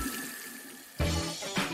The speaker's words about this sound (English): After the process has calmed down, open the taps and let some lukewarm water run for a minute or so. It should wash off all the residues that were clogging your pipes.